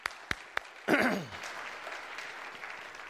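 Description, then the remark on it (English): At a church's last Sunday service of the year, a few sharp, separate claps ring out for 50 years of marriage, then the audience breaks into steady applause that swells quickly and carries on at a moderate level, with no talking over it. “Maybe it's been a while since I was at the last Sunday service of a year, but did nobody want to break into applause for 50 years of marriage?”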